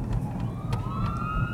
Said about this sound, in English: Oh, ambulance.